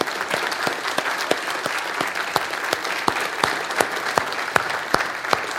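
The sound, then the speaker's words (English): An audience at Myrtle Grove Baptist Church applauds its deacons steadily, a dense wash of clapping with sharper individual claps popping out at an irregular rhythm, sustained throughout with no voices over it. “Y'all just give them a hand for what they do.”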